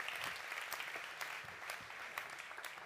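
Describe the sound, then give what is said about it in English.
An audience claps steadily, a dense patter of many hands with bright, sharp slaps layered together, sustained and even throughout. “There, they brought, yes, come on, give them a clap.”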